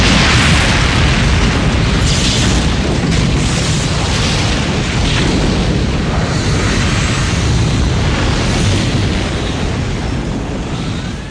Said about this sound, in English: It's coming from the reactor room. Still scanning. The reactor's going critical, Captain. It's going to implode.